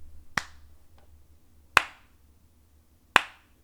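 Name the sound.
clapping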